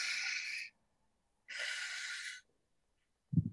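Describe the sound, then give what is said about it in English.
Two long, airy breaths, a slow inhale and then an exhale out through the mouth, each lasting about a second, followed by a short, low puff of air. “Breathe all the way in and then out of our mouth.”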